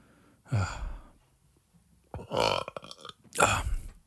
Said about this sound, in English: I don't know why I burp so much. I think I know why. I think no one talks this much to themselves and your stomach's just reacting to all the like liquid of coffee and shit that I'm just fucking shoving in there.